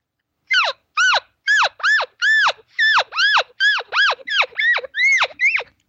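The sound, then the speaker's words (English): A rapid run of about thirteen high, squealing elk calf calls, each a short nasal mew that arcs up and slides down in pitch, repeated with brief gaps and no talking. “as you're running right at him and you're making that sound, you sell it so much that you are a calf”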